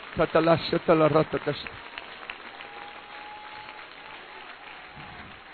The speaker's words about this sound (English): Would you clap your hands again to the Lord and give Him praise one more time?